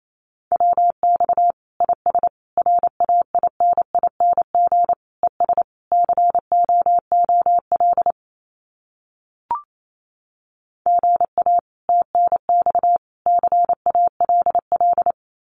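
Rapid Morse code at about 28 words per minute sending common QSO phrases: a steady mid-pitched beep keyed into quick dots and dashes, in two runs separated by a short pause with a single click.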